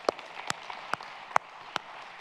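Scattered applause from a gathered crowd at a church service, welcoming the church's Honduras coordinator to the stage: a soft, steady patter of clapping with a handful of sharper, louder claps standing out at irregular moments. No one speaks.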